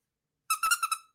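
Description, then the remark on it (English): A dog's squeaky toy squeals in a quick burst of about five high, bright squeaks, fairly loud and alone with no voices. “But I got his squeaky toy.”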